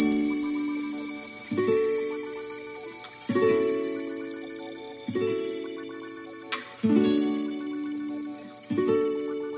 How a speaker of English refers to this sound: Alright, now I'm going to start the timer for 3 minutes. And when you hear the sound of the gong, that means that your meditation is over.